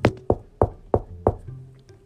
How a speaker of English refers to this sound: So the three boys treaded up to her hut, and Jace knocked on the door.